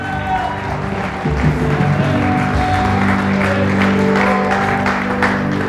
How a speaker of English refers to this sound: I want you to clap like it's your mother. I want you to clap like it's your sister.